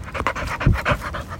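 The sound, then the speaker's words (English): A dog named Vinny D, a foster dog, pants rapidly, several quick breathy huffs in a steady rhythm with a few deeper throaty breaths, no talking. “I think that's the most inspiring thing I've ever heard from a dog.”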